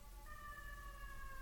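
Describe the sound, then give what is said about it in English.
An emergency vehicle siren sounds, a sustained high tone that sinks slightly in pitch as it passes, over low traffic rumble with no one talking. “Hold on, we got a siren.”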